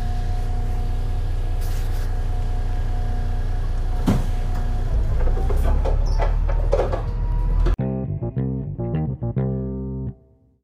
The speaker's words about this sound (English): I've now got to tell my girlfriend that I'm safe on the bus.